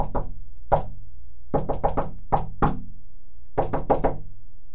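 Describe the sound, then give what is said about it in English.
Someone outside a door knocks in a deliberate, coded-sounding pattern: single raps, then a quick burst of four, two more, and another rapid cluster. Solid knocks with no voices. “Someone! Outside the door.”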